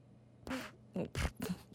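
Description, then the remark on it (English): A person's voice makes a mock cat purr: four short, rough, buzzy bursts in quick succession, fairly loud, with brief gaps of quiet between them. “Do you think this sounds like an actual cat purring?”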